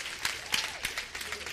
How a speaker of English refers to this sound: Amen? And clap. Go ahead. Just do it.